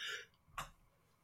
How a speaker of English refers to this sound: God, I can't stop yawning. Jesus.